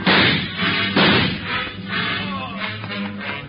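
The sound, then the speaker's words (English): Two loud, sharp gunshot blasts in an alley as a fleeing man is shot in the leg, the first at the very start and the second about a second later, each trailing off into a rumbling echo and lingering noise. “He got him in the leg, Joe.”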